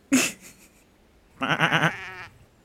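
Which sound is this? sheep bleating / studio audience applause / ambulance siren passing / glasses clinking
sheep bleating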